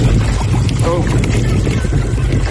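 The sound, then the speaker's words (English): A boat on open water, where two men are trying to cut ropes to free an entangled dolphin, with a steady loud rumble and gusting wind buffeting the microphone throughout, and a brief muffled voice faintly heard beneath the noise. “They had the boat, navigated up to the dolphin, and started trying to cut the rope. So that's what you're going to hear here.”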